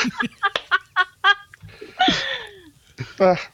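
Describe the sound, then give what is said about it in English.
A quick run of short, chirpy squawks from a cartoonish chocobo, a chicken-like bird creature, followed by a longer warbling cry and one final squawk, loud with no talking. “More like a little chicken that kind of acts like a horse and makes funny sounds, tries to fly like an ostrich but fails.”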